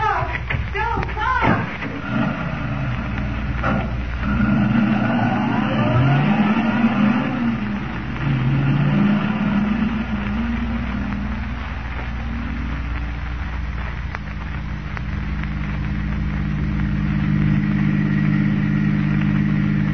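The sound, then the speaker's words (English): A car engine revs up with rising and falling pitch, then settles into a steady, loud rumble as the vehicle drives on continuously. “The Phantom automobile is going to put in an appearance tonight.”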